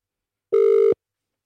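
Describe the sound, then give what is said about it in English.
The first ring of a phone call: one short burst of ringing over a call line, a steady, mid-pitched electronic tone with a slight buzzy flutter, lasting under half a second before cutting off into silence. “That's ring number one.”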